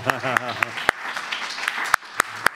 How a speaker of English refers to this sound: Let's clap,